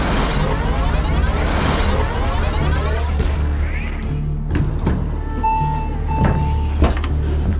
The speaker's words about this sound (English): Hands on the mainframe, Case. You got it. Ready? Ready. Powering up.